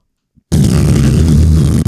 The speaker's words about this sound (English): That's what people in Boston fart like.